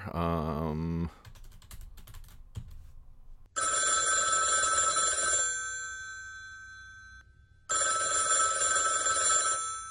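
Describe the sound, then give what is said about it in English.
A telephone rings twice in long, loud bursts with a shimmering bell tone, separated by a short pause and preceded by a few seconds of quick clicking, like keys or dialing. “Let me get my phone here.”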